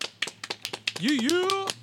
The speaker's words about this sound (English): Let's give a big round of applause for our man